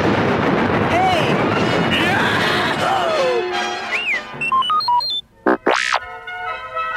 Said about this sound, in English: Get to a laser cannon, kid! We've got four Imperial TIE fighters chasing us! Luke, still stunned by Ben's disappearance, managed to fire the cannon repeatedly until he and Han had shot down all their pursuers.